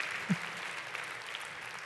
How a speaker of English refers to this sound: Come on, give the Lord and the Baptist and everybody else a good hand clap.